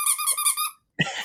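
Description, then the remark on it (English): A squeaky toy monkey gives a shrill squeak that pulses three times in quick succession, then falls silent before a brief rough, breathy noise follows. “He's my squeak monkey. Or he's my toy.”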